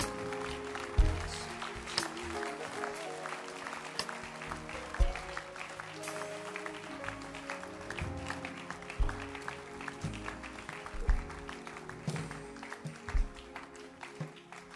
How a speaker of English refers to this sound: Another person is coming. Somebody is coming. Clap for them.